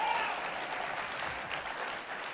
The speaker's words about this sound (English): Now clap your hands and give the Lord praise.